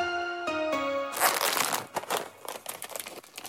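A brief falling three-note tone gives way to loud, bright crinkling and rustling of a plastic popcorn bag being torn open, with uneven crackly bursts continuing to the end.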